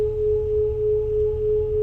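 A steady sine tone hums with a slow, regular beating swell, rising and falling about every half second, over the rumbling low hum of a machine, the sound of water and a soft whooshing wash, with no voices.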